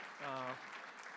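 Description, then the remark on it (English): A crowd claps steadily in a church, a dense spatter of hands, with one voice letting out a short sustained cheer partway through. “So give them a random hand of applause.”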